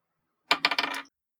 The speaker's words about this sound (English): First roll on this dice is a 10. Perfectly in the middle.